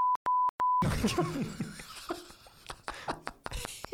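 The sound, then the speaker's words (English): A pure, high censor-style beep tone sounds three times in quick succession, the last one held slightly longer, followed by a jumble of cluttered, muffled noise. “We just whip the beeps out, man. And now we just beep, just beep, upload.”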